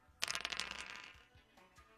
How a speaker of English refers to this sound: Roll the dice to determine your handicap. We set it at 15, but whatever you roll, we'll take that number off 15.